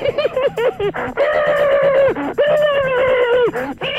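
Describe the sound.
A person imitating chipmunk noises over the telephone makes rapid, high, squeaky chatter, with short bursts giving way to long, sustained warbling squeals, loud and continuous with brief gaps.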